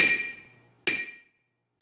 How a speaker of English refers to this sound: The story goes that Pythagoras happens upon a blacksmith's workshop and finds to his joy that the hammers make sounds based on the ratios of their weights.